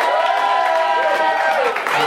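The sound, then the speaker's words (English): An audience of about 200 people at a live show yells and cheers loudly for about two seconds, many voices blending into a dense, steady roar with a few higher shouts rising and falling above it. “I'm going to allow now all 200 people to yell as loud as they can.”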